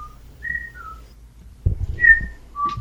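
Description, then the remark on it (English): A person whistles a short, bouncy melody imitating the Skype call ringtone: a few clear, sliding notes, moderately loud, with low rumbling handling noise underneath in the second half. “Are you whistling the Skype ringtone?”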